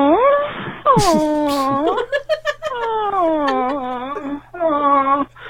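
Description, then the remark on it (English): A puppy whimpers in a string of high, wavering whines that rise and fall in pitch, broken by a few short yelps. The cries are fairly loud, with no other voices. “Puppy.”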